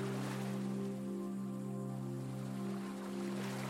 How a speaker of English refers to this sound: And small waves are lapping the shore.